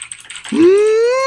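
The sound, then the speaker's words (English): Quick, light clicking of keys on a computer keyboard as someone types in a command to order free cake, for about half a second, then a loud, drawn-out rising tonal whine takes over and drowns out the typing. “He's typing in the command to order free cake for those of you who have a classic TechSnap shirt.”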